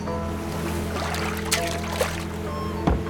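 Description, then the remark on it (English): A fishing rod with a jeweled hook and no catch on it is lifted out of the water at the edge of a boat, with a few brief splashes and drips, set against the steady low hum of a boat engine. “He pulled the rod out of the water and was dismayed to see that there was nothing at the end of the jeweled hook.”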